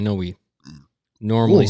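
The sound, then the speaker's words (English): A short, low, guttural burp lasting a fraction of a second, quieter than the voices talking just before and after it. “That was a burp.”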